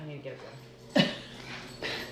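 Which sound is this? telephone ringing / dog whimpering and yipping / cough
dog whimpering and yipping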